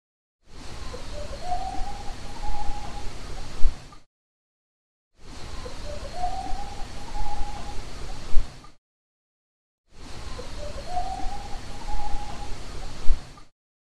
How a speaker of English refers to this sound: I knew what I heard. So at the end of the wood knocks, there's a kind of whoop you can hear.